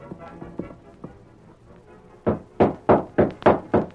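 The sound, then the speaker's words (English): A quiet stretch gives way to a loud run of about six firm knocks on the wooden door of a house, coming in a fairly quick, slightly uneven rhythm. “Just 1 minute. I'll get the door open.”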